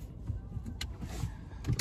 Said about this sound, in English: Here we go. We're gonna park in here and get this car charged up. We're gonna get this car charged up real nice.